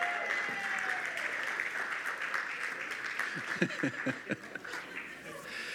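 A room full of people claps steadily for several seconds, a dense patter of applause with a few scattered chuckles and murmurs mixed in, fairly close and moderately loud.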